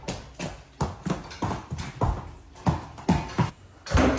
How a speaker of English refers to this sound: While we were visiting my Nana at her condo, I couldn't help but notice that the people who live above her were so loud. What are they doing up there? This is what their footsteps sounded like.